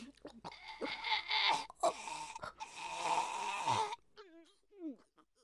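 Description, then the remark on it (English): A woman being strangled chokes and gasps in harsh, strained rasps, loud, in broken bursts for several seconds before trailing off into a few faint voiced sounds. “She's had her last gasp. You've broken her neck.”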